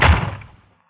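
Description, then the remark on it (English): A man slams a single heavy door shut, a sharp booming thud that rings out and fades away within about half a second, with no voices. “The man who slammed the door in my face had the same angry look and the same angry glare”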